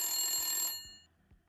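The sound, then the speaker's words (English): A loud, bright game buzzer blares in one steady, harsh burst for well under a second, ending a timed round of naming burger toppings, then cuts off, leaving only faint low thumps and near silence. “Grilled onions was after the buzzer.”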